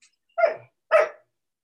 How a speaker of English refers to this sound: I don't want you to go outside because you bark at the other dogs. Hush.